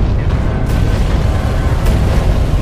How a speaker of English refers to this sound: Instantly, all the moisture boiled in the water pipes nearby. The pipes burst in explosions of pressurized steam.